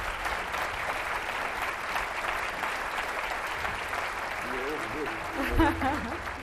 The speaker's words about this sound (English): Please give a hearty welcome of applause to Mr. Wendell Berry.